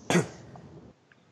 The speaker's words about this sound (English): Pardon me, I'm trying to clear my throat.